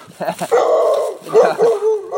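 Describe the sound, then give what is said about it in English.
A dog barks on a street near the Hewitt Street hill in a quick burst of short yaps, then lets out longer, drawn-out whining yelps that rise and fall over the next couple of seconds. “Another dog temptation.”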